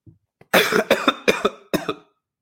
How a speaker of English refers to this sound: Just think I coughed up some phlegm, but you don't need to know that.